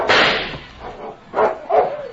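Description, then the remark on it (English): A harsh, noisy burst opens, followed after a pause by two short, mid-pitched barks from a mutt dog in quick succession, fairly loud, with no talking. “Get back there, you mutt!”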